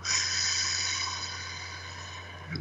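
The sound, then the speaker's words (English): A long, steady exhale through the mouth, fairly soft, lasting a few seconds over a faint low hum, with no one talking, during a guided breathing exercise after a big belly breath. “And out.”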